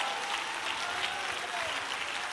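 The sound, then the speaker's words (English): An audience, standing on their feet, claps steadily, a dense wash of many hands applauding at once, loud and continuous throughout with no pauses, filling the room without any clear voices standing out. “I tell you what, dude, just so everybody will feel comfortable, just get up on your feet right now and clap your hands and say, I need to touch him.”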